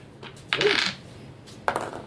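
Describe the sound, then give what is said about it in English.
Red dice clatter across a hard tabletop in a short, bright rattle, then a second quick tumble follows a moment later, fairly loud, as a player rolls during a tabletop role-playing game. “The red dice are so I roll it like twice, right?”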